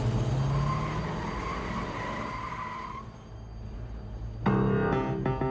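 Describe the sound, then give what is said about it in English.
A Buick getaway car's engine roars as it screeches away with hostages standing on its running boards, a high, sustained tire screech riding over it for a few seconds, then fading before a second sharp, loud squeal bursts in near the end. “The gang pulls the hostages to the getaway car and forces them to stand on the vehicle's running boards before the Buick screeches away.”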